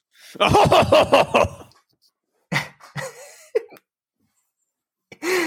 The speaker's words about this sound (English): You don't want to cough a lung out.